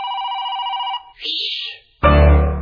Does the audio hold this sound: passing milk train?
no